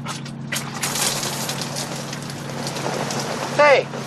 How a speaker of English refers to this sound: Hey, it's raining. You made it rain.